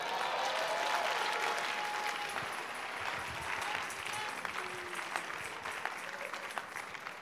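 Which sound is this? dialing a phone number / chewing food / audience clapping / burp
audience clapping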